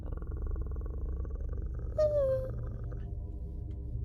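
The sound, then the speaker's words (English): A low, rumbling growl made by a human voice imitating a wolf turning and baring its fangs, steady for about four seconds, with a brief higher, falling whine-like tone partway through. “The wolf is going to turn, look at you, and bare its fangs with a...”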